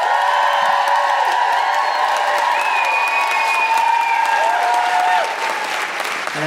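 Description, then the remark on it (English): Loud, sustained applause from a large audience at a live show, with high feminist woo-hooing and cheering voices rising over the steady clapping, continuing for several seconds before easing slightly near the end. “Please put your hands together and make general, enormous, guilty feminist woo-hooing noises for the wonderful”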